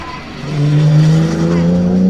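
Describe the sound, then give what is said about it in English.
A racing car, the GD40 chassis 1109 driven by Rob Sherrard, roars past, a loud sustained drone whose pitch climbs steadily as it accelerates along the track, lasting about two seconds. “So for those of you, here's Rob Sherrard in the GD40. Chassis 1109. Same car we raced at Buller a couple of weeks ago.”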